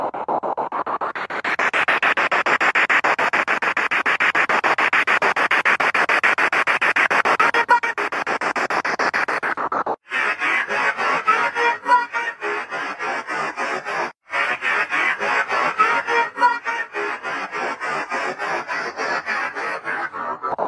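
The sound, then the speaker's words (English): Continuous harsh radio static from a spirit box, hissing and crackling as it sweeps through frequencies, with rapid choppy bursts and brief dropouts in the noise. No one speaks over it. “It sounds almost like, and I know it's hard to distinguish because you're playing on the spirit box with the waves and the frequencies going in and out, but it sounded right.”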